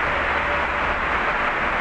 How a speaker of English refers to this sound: But I'll pretty much just kind of shut up, and we'll listen as to how we'll listen as to the train comes in, and we'll hop on.